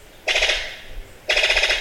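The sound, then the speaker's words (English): Two loud bursts of a brown sicklebill's rapid, rattling call, a bird of paradise native to New Guinea. Each burst is a harsh staccato stutter lasting about a second, like a machine gun firing, with a short pause between bursts. “It was, in fact, the call of the brown sicklebill, a species of bird of paradise native to the region.”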